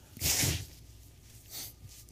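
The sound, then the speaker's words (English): A loud, forceful nose blow, a rough breathy burst, followed a second later by a shorter, softer blow. No one speaks. “Excuse me, I got to blow my nose.”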